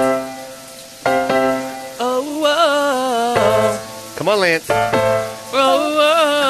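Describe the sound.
A steady hiss of a running shower sound effect plays under a man's singing voice as he pretends to be in the shower; his voice wavers up and down in pitch, with someone talking briefly at the start.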